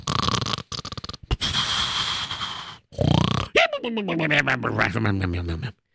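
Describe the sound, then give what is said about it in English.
Loud snoring of a man asleep in a bedroom: a few rough, rasping breaths with short pauses between them, followed by a drawn-out, wavering groan that sounds almost vocal as the sleeper exhales. “Yes, I hear him snoring.”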